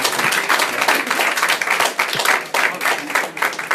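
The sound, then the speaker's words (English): A crowd applauds with dense, steady clapping, many hands overlapping into a continuous patter that stays fairly loud throughout with no voices standing out. “You can clap.”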